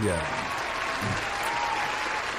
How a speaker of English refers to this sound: So let's give a round of applause here.